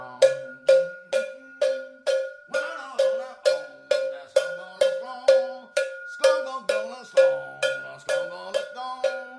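A cowbell strikes in a steady, driving beat through a rock song, each bright metallic clank ringing out over guitar and other instruments, around twenty hits in even succession.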